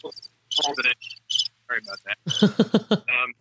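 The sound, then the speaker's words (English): Crickets chirp in a rapid series of short, uneven bursts, fairly clear, with brief pauses between them and no one talking. “There are crickets in the bunker.”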